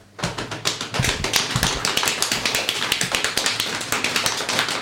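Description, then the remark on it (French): A crowd slapping their thighs in a rapid, dense patter of soft smacks, steady and fairly loud for about five seconds, with no talking over it. “Un applaudissement par les cuisses.”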